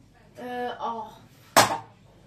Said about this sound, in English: Stop knocking that can around. You're deafening the listeners.